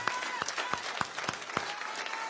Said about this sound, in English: You know, this side clapped and that side clapped, and we could do it if we want to. Like, left side, come on, yeah. Right side, and just come.